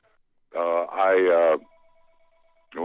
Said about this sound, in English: Can you hear the family phone ringing? That's all right, man. This podcast is down and dirty and raw. It doesn't matter. Leave the phone call in.